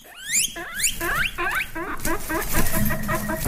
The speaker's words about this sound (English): It's a guinea pig. Yeah, guinea pig. Interesting sound they make, don't they? Cute little things, huh?